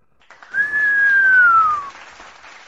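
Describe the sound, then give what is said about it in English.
A single long, shrill whistle holds a steady high pitch, then slowly slides downward, riding over a brief wash of crowd cheering that swells and fades with it. “There on the lovely lakes, giving you all a big cheer.”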